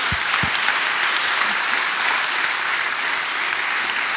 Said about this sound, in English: We're going to give these guys a big round of applause. Come on.